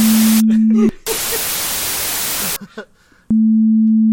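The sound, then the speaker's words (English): A loud, harsh hiss of white noise, made with the generate noise function in Audacity to bleep out a name, bursts in for about a second and a half, sandwiched between a steady low electronic tone, with brief muffled voice fragments around it. “And also, you have to make it white noise. You specified that it was white noise.”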